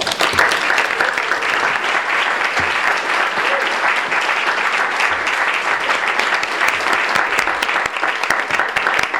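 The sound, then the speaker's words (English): Sustained audience applause for the readers at a Rattling Wall reading event: dense, steady clapping from many hands at an even, fairly loud level throughout, with no one speaking over it. “One more round of applause for all of our readers.”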